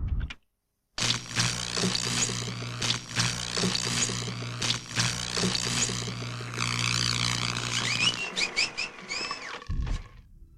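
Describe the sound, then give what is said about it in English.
Electronic beeping and chirping from a VCR board game, signalling players escaping a block in the game: a dense, rapid stream of high warbling tones over a steady low hum, ending in a few rising whistle-like beeps before cutting off. “Well, this sound you've been hearing, these beeping, is people escaping the tension block”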